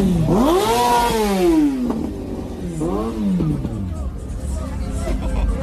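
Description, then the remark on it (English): A motorcycle engine revs up and down twice, a long rising-and-falling roar followed by a shorter burst, loud, with a low engine rumble and background noise throughout. “Guy on a bike gets kicked on a motorcycle.”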